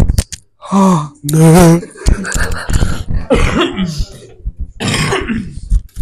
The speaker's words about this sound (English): Like, your mouth went up to the microphone. I saw a glimpse in your eyes of you not wanting to do it, and then you pulled it away and coughed into your. I watched you almost. Stop! Stop coughing into my microphone.